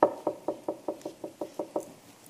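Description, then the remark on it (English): A steady run of about ten knocks on what sounds like a wooden door, evenly spaced and fairly quick, moderately loud, with no voices. “But he's standing knocking at the door of the church of Laodicea.”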